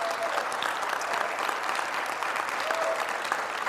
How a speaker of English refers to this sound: You don't have to, I didn't do that so you clap, but I want to mark the moment and the occasion because I just want to say thank you.